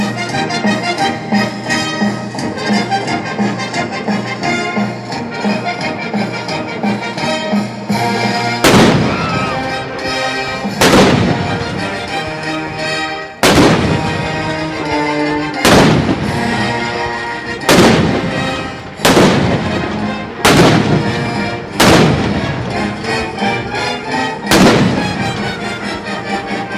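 Loud cannon blasts boom out over full orchestral celebration music, about nine heavy shots arriving every couple of seconds after a purely musical opening, each one sharp.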